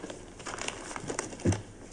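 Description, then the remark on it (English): A morning newspaper picked up off a lawn rustles and crinkles as it's handled, with scattered crisp crackles and one louder crumpling rustle near the end. “Yeah, I got your morning paper off the lawn.”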